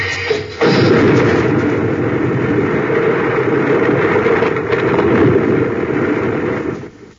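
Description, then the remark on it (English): A blast gun fires at an overhanging rock on a sheer cliff: a sudden heavy blast bursts in, then a loud, continuous low rumbling roar of rock breaking apart carries on for several seconds before tapering off, with no voices. “He blasted that overhanging rock.”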